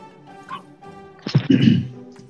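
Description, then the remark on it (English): A sudden thump followed by a short burst of clattering and scraping as a man laughing hard falls off a chair, fairly loud over a faint steady background hum. “laughed so hard, he fell off the chair.”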